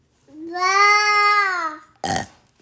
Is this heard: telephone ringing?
no